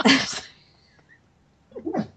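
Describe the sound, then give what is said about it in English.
A sleeping dog named Layla, dreaming, lets out a sharp, breathy snort, falls quiet, then makes a brief run of soft, muffled whimpering yips, with no one talking. “There's a dog dreaming next to me right now. If you hear that.”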